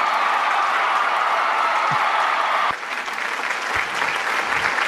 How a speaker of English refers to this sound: Let's just give it up real quick. Yeah, give it up for them. Please clap. Please clap.